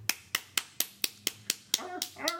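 A single person claps briskly and steadily, about eight sharp, loud claps in an even rhythm, followed by a short burst of voiced sound at the end.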